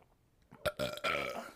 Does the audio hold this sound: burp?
yes